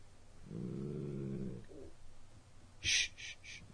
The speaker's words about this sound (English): Day 4, 3:48 a.m., 12/15/2018, Zoe is seeing things. It's pitch black in my room, and Zoe, my dog, has been growling like every couple hours. Zoe never growls, ever. And she just started doing it.